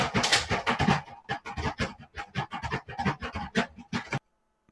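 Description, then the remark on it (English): A dog scratches and paws at a door, trying to get in, a rapid, uneven run of rough scraping bursts lasting about four seconds before stopping abruptly. Fairly loud, with no one talking. “So there's some kind of noise going on. I don't know, somebody's trying to get in, a dog probably.”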